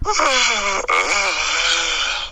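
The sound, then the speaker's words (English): A loud human yawn, drawn out and voiced, its pitch sliding downward before a brief catch and a second stretched, breathy moan. No one speaks. “It was a yawn.”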